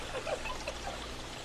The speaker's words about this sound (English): It landed in the fountain, splashing water everywhere.